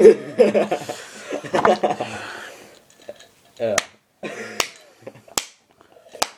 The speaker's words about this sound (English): Well, thank you, you're too kind. Yeah. Slow clap.